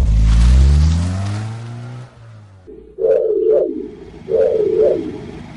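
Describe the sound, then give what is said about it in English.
A car engine roars loudly for a couple of seconds as it accelerates onto a highway, its droning pitch sliding as it moves off, followed by two short warbling, chirp-like tones over a low rumble. “Let's take the highway. We gotta get downtown to fight the bad guys”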